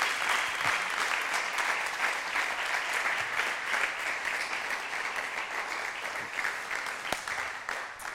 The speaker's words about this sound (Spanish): ¿Sí? Le damos un aplauso. Gracias. Te queremos.